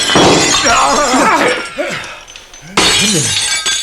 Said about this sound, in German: Das Ding ist ja geladen. Da bin ich ja froh, dass ich in die Luft geschossen habe.